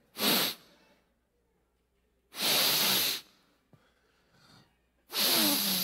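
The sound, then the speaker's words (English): A voice imitates an old farmer sniffing the air on a farm: three loud, drawn-out nasal sniffs, separated by short quiet pauses with a faint breath between them. “And we're walking, and they're giving me a tour of the farm, and that old farmer starts sniffing.”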